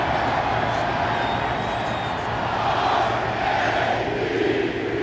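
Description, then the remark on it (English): A large crowd at a Baltimore Ravens home game, the coldest in Ravens history, roars and chants together as a fan takes off his shirt in the upper deck, a dense, steady wall of many voices that swells slightly toward the end, with no single voice standing out. “this crowd is getting roiled up because Real Fan Dan has taken off his shirt in the upper deck and the chant begins.”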